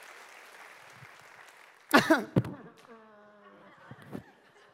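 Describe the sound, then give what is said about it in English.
Steady audience applause from the crowd in Lufkin and Nacogdoches for the guys at Duncan and Dieball fills the first couple of seconds, a dense wash of clapping at moderate level, then a loud vocal outburst cuts in and a man starts talking as the clapping fades. “Give it up for our guys at Duncan and Dieball.”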